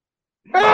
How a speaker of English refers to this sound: Oh, that scream